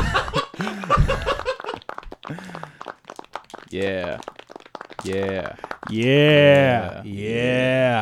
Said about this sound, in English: I didn't mean to hit the boo track. Yeah. We booed you on accident. Yeah, that's okay. Accidental booing.